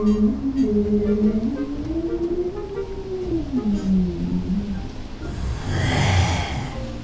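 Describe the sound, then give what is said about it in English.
A long, low whale song glides and wavers in pitch for about five seconds, then gives way to a breathy, rushing exhale with a deep rumble. No talking. “His ears are filled with the ancient songs of hoverfish and dragon whale.”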